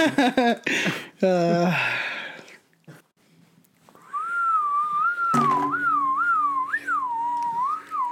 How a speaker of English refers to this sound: All right. Stop all whistling.